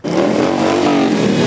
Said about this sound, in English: They promised it would be loud, and they delivered. Hundreds of motorcycles rumbling through Ottawa as people lined the streets to cheer them on. The ride carefully monitored by police, who are restricting vehicles from entering certain areas.